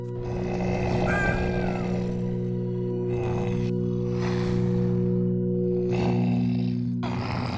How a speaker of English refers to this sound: He lets out a big burp, which saliva smacks Sokka in the face.